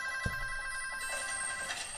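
signal or alarm, telephone ringing

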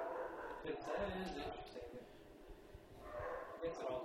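animal, dogs barking and yipping

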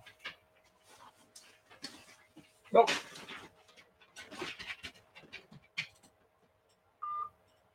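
animal, dog

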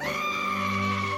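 sound effect, screaming goat sound effect

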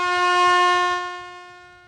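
signal or alarm, air horn blast

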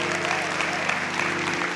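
crowd, audience applauding

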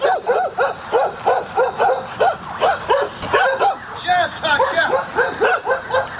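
animal, dogs barking

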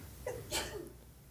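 human body sound, sneeze

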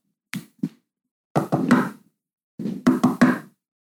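impact, knocking on a door

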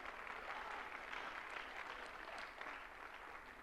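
crowd, audience clapping in praise

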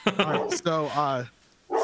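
animal, dog barking

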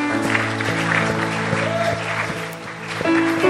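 crowd, audience clapping

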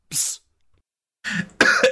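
human body sound, cough

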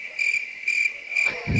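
sound effect, crickets chirping sound effect

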